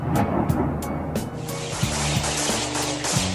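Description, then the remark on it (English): A suicide drone's engine drones steadily overhead in flight, a buzzing motor tone with shifting pitch over a broad rushing noise, joined by a few sharp bursts early on; no one speaks. It is a type of drone Iran is accused of selling to Russia, used to bombard Ukraine. “A suicide drone in action.”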